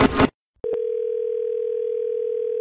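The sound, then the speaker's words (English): After a short burst of noise and a couple of sharp clicks, a steady telephone ring tone hums continuously at an even level, clear, with no voices. “All we hear is the telephone ringing and Jay saying hello in both segments.”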